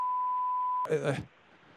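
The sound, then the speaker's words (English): A steady, high electronic telephone beep holds for under a second as someone answers the phone, then cuts off abruptly as a short burst of a voice comes through. “Oh, I'm just answering the phone.”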